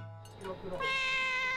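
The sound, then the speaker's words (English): A cat lets out one long, loud meow, starting softly and swelling into a sustained, bright, high-pitched cry that holds to the end. “If you're looking for a little place to rest after a long day of walking in this busy city, you can go to one of the many cat cafes in Tokyo.”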